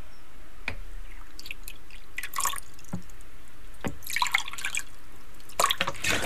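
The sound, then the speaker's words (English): Drops of propolis tincture fall into a glass with a bit of water in the bottom, each landing as a small plink, coming irregularly a few at a time with brief pauses, some in quick clusters, no talking. “Right, so we've two glasses of a bit of water in the bottom of them, and you're going to add in the propolis now.”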